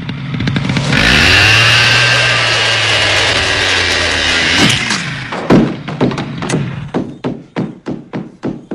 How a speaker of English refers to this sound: He's upstairs. He still has the fucking chainsaw in tow. So he's still up there. And then the null post is like kind of riggedy. So he takes the chainsaw and revs it up and then saws it off.